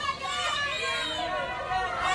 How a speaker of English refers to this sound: They're cheering for her.